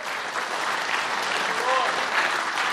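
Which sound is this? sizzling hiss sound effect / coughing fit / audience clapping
audience clapping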